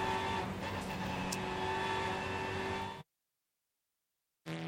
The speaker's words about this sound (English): Cars out on the track then. Let's see who does what to whom.